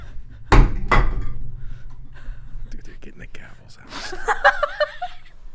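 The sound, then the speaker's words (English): Two loud thuds land about half a second apart as two people slam their coffee mugs down onto a table, followed by soft whispering and muffled laughter. “… and I are retaliating by slamming our coffee mugs onto the table”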